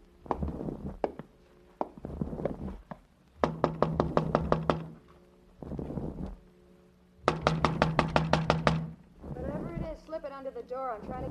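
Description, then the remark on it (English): Two rapid bursts of sharp knocking on a door by the police, each a quick run of raps, with low rumbling and murmured voices in between and a brief voice at the end. “Open up, Miss Sullivan. It's the police.”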